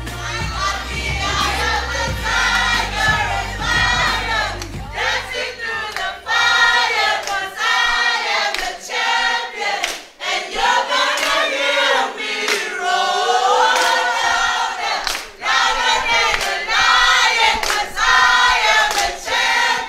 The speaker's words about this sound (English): Okay, I want to hear Brettonwood. I want to hear Brettonwood High School roar one more time.